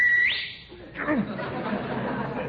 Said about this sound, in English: And don't whistle. You want to scare the life out of people?